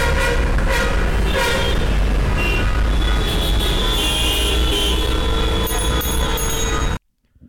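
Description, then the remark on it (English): Many car horns honk and blare over one another in a loud, unbroken tangle of noise from a traffic jam where cars are stuck for three hours, with a low engine rumble underneath, then cut off abruptly into silence. “Og når man sidder fast i trafikken i 3 timer, så lyder det sådan her.”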